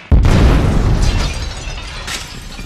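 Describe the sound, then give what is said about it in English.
Grenades thrown inside a church explode with a sudden, sharp blast, then a heavy low rumble rolls on and slowly fades, with scattered crackles and hissing bursts over the tail. No voices. “Throw them grenades, man!”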